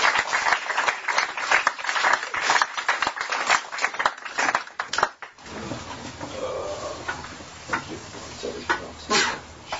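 A crowd applauds with dense, steady clapping for about five seconds, then the clapping stops abruptly and gives way to a quieter stretch of shuffling and low room noise.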